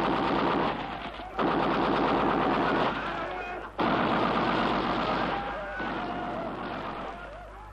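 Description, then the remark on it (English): Sustained bursts of rapid fire from four Browning machine guns trained on a hill, loud and dense, broken by a couple of brief pauses before the clattering resumes and gradually fades slightly toward the end. “You're going for the machine gun. Yes, the Brownings. They're trained on the hill.”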